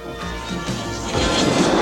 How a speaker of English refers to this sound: And just as he's talking to Dusty, the Hermes jet flies overhead.